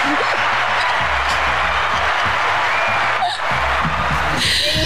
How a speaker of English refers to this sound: But you know what? It's weird. Everyone's cheering.